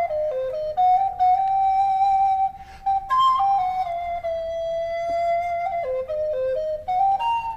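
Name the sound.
whistling a tune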